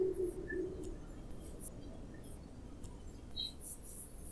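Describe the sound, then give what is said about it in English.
A large eared owl gives a short, low hooting call at the start, fairly soft against a steady hiss of outdoor background noise, with scattered faint high chirps and squeaks afterward. “It also has a beautiful call.”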